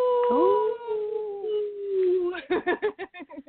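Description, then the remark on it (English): A person lets out a long, wolf-like howl that swoops up and holds steady for about two seconds, then breaks into quick, choppy vocal bursts. “Witch howl!”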